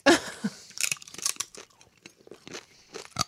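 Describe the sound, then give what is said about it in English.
Loud crunching of sweet potato chips, a rapid series of sharp, brittle snaps and crackles repeating irregularly for a few seconds with no talking. “Oh my God, this is extremely crunchy. Can you hear it?”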